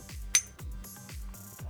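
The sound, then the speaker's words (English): Glasses of Talisker 10-year single malt Scotch whisky clink once in a toast, a single bright, ringing chime that fades quickly over a steady, low, rhythmic thumping in the background. “Let's cheers this up.”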